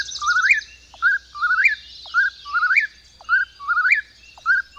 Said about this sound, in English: The Eastern Whippoorwill, Caprimulgus vociferus, today's Talking Birds featured feathered friend.